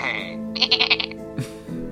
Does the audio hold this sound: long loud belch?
no